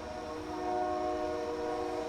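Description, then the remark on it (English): A train horn sounds steadily as a train rolls past, the sustained blare layered over a low rumble of rail noise, fairly loud and continuous throughout. “Yes. The train.”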